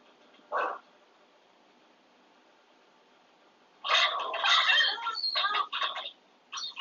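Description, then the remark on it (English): A single sharp bark, a few seconds of quiet, then a loud, rapid flurry of overlapping barks from more than one dog. “It's the one thing I hate about having dogs.”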